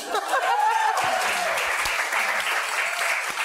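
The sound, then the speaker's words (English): An audience at an International Women's Day event applauds steadily, many hands clapping in a dense, sustained patter at an even loudness. A few cheers or voices rise briefly near the start. “I was expecting applause.”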